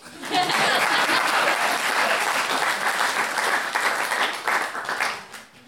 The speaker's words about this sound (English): I hope that even if you don't have a great relationship with your dad, you have great relationships with other people. Would you clap if you agree?